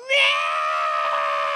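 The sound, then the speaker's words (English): A person imitates a cat's scream: one loud, drawn-out, high-pitched yowl that bursts in sharply and holds steady for over a second, on its own. “But I heard the scream. And I knew it was him. He has a very distinct scream.”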